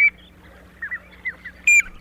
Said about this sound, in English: The piping plover, our featured feathered friend here on Talkin' Birds.